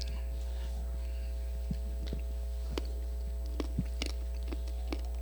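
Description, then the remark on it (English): Someone crunches a mint, with a handful of irregular, sharp clicks and crunches scattered over a steady low electrical hum, no talking. “I'll chew that mint really quick.”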